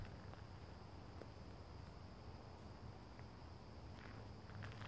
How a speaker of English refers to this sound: Well, I guess not birds, sorry. The crickets. Are cicadas out at night?